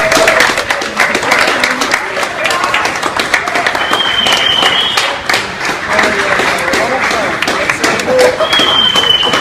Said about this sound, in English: I understand this is at a Best Buy, and the applause that you're hearing is actually staff applauding and thank.